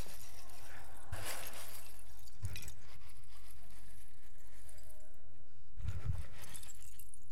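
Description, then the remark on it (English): Plastic Lego bricks are poured into a pile on a stage in three separate bursts of rattling clatter, with quieter pauses between them and no talking. “So I've got all these Legos, and what we do is we stand in this pile of Legos, and even when we're standing in it, it looks like fun toys, right?”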